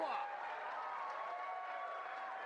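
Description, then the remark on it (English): A standing wrestling crowd claps and cheers after a two count in a 1999 WWF match between Chris Benoit and Al Snow, a steady, dense wash of noise that holds even for the whole moment, with a commentator's voice running over it. “You get the crowd standing up, clapping like it's fucking golf.”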